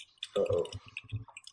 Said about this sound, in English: Yeah, y'all hear me typing. Sorry.